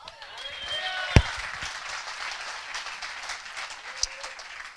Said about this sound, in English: Give him a hand clap.